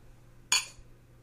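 A single bright clink of beer glasses touching in a toast over a big IPA, a sharp ringing tap that fades quickly, against a quiet background with a low steady hum.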